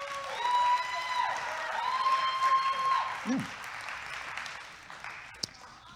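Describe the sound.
A crowd applauds steadily for several seconds as a woman comes up to speak, the dense clapping mixed with a few whistled tones and faint voices, then thinning out toward the end.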